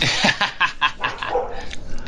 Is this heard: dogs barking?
yes